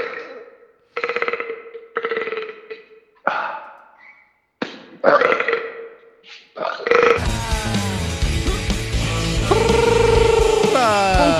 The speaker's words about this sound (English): I got a little burp in me right now. You gotta give me a minute. I love burps. Burps are whoa. I can burp like a champ. Do it. Keep doing it. Do it into the phone.